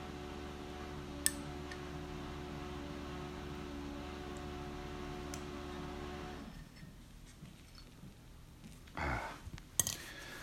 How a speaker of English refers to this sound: It's the dishwasher you can hear in the background.